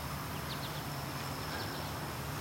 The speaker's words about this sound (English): American goldfinch flying over.